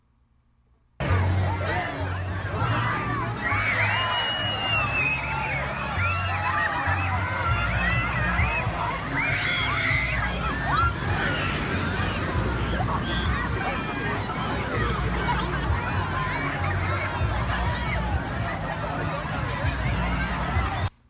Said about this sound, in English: Is that just ambient of people at a pool? Yeah, it's ambient of people in a wave pool. Did you record that yourself, you creep? I did. I went to Dorney Park this afternoon. Wave pool.